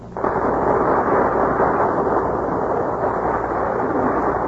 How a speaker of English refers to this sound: That burst of applause is for our stars who are taking their places before the Gulf microphone.